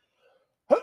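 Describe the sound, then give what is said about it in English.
A single sharp sneeze bursts out after a near-silent moment, fairly loud, with a quick explosive onset that trails off briefly. No one talks. “Bless you.”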